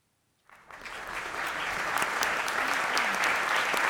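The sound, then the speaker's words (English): A clapping sound effect: applause starts abruptly after a half-second of silence and builds into a steady, dense wash of many hands clapping, sustained at a fairly loud level with no voices. “I have three clapping noises.”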